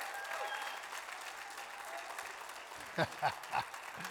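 A church audience clapping their hands in a dense, steady patter, then three sharp, separate claps ringing out close together near the end.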